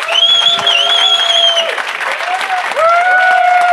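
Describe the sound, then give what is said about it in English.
An audience gives a loud, steady round of applause for guest Glenn Block on .NET Rocks, lasting several seconds, with sustained whistle-like tones riding over the dense clapping. “Let's give one more big round of applause to Glenn Block.”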